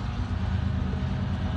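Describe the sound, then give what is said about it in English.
A train rolls by with a steady, heavy low rumble and a broad wash of mechanical noise that holds an even loudness throughout, with no voices. “Every time I get going, the train schedule, I swear, changes.”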